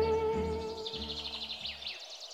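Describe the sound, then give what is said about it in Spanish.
Rapid, repeated simulated birdsong chirps and trills, played from loudspeakers in Arcadia park in Rapture in early 1955, where there are no real birds, twitter steadily over a low, sustained humming drone that drops away near the end. “No, hay altavoces que simulan el sonido de los pájaros.”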